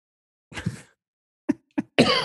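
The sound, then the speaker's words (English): A series of coughs, fairly loud: one harsh drawn-out cough, then two short sharp ones, and a final rougher, longer hack. No talking. “I'm going to go cough.”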